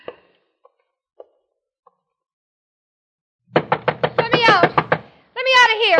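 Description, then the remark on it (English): A few faint, spaced knocks, then a burst of rapid, loud pounding of a fist on a door, mixed with a raised voice shouting "let me out" that carries on after the banging stops. “Go bang on the door and yell, let me out, let me out.”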